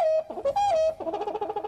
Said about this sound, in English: Little Woody the Woodpecker? Good joke. I liked it. We brought it back.